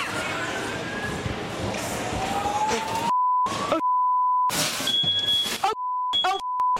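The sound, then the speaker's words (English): A fire alarm in a woman's apartment building, set off by smoke from her cooking, sounds a loud, steady electronic beep, cutting in and out between bursts of noisy commotion and muffled voices. “She's causing so much smoke, she sets off the fire alarm in her building.”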